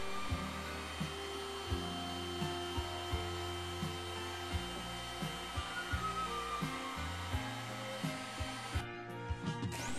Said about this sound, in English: Once you've done all the cutting out and drilling, remove the paper from the board. A heat gun helps lift the paper.